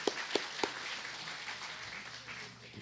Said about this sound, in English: Thank you, volunteers. You've done brilliantly. Should we give them a little round of applause?